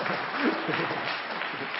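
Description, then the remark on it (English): A burst of audience applause fills the whole moment, dense and steady clapping from many hands at moderate volume, with faint crowd murmur mixed in. “I wasn't really looking for applause for that, but 12 is a good number.”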